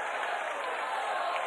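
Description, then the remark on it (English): An audience at a campground worship meeting claps together in a dense, continuous wash of applause that holds at a steady, fairly loud level throughout, with no distinct words rising above it. “Clap your hands.”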